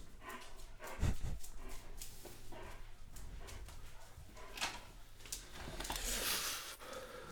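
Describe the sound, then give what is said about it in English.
A dog barks at the front door in scattered bursts, slightly muffled, with a sharp loud bark early on and rougher barking and panting toward the end over low background rumble; nothing was there. “He was going ape shit at the front door.”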